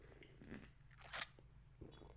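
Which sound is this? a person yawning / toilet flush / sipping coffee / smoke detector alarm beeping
sipping coffee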